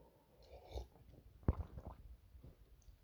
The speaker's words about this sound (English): And pull up a chair around the wheel, and I'm gonna take a sip of coffee myself.